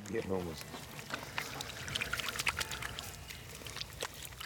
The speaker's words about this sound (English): take turns pouring water onto each other's hands to clean up.